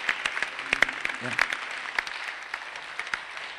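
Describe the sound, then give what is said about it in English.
A church audience claps in a dense, steady patter of many hands, bright and moderately loud, with brief voice fragments murmuring underneath. “You're even clapping shows that you don't believe anything.”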